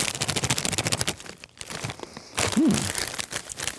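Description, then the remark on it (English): Loud crinkling and crackling of a bag of Abadaba-flavored Lay's potato chips being opened, with rapid irregular bursts of rustling plastic, a brief pause, then more crumpling. “Okay, so Abadaba flavored Lay's.”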